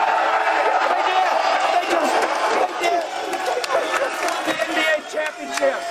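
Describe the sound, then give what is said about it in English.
A large crowd of fans at a live Super Bowl 57 TV broadcast cheers and shouts continuously, a loud, dense roar of many voices with scattered whoops rising above it, no single speaker standing out. “So happy the crowd is great.”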